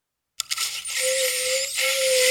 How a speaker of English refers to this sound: Well, this is the toothbrush song.